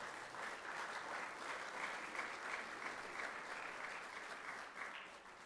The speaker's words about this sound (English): I think we ought to give him a round of applause for that.